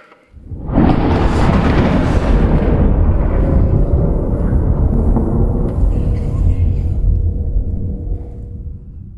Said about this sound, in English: And verse 5, from the throne came flashes of lightning, rumbles, and peals of thunder.